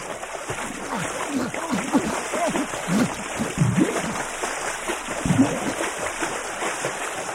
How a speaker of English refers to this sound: There was the splash of a body falling into water, followed by violent thrashing, like someone was drowning.